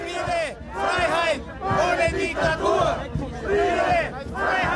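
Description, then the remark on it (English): Tens of thousands of protesters chant "Peace, freedom without dictatorship" in loud unison on the streets of Vienna, Austria, protesting a new lockdown and planned compulsory vaccination. Their voices rise and fall in a steady repeated rhythm of phrases with brief gaps between them. “Peace, freedom without dictatorship is what these protesters are chanting.”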